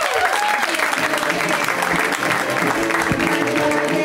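An audience claps steadily, a dense, even wash of applause that stays loud for the whole stretch with no pause or drop-off.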